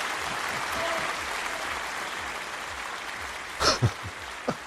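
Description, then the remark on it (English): Steady crowd applause, a dense wash of many hands clapping at moderate volume, followed near the end by a few louder, sharper claps standing out from the fading noise. “The elves there clapping before I even said anything.”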